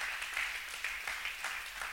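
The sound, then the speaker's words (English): An audience clapping together: a dense, steady patter of many hands with faint rhythmic surges, fairly soft overall and with no voices over it. “Come on, y'all, clap for me.”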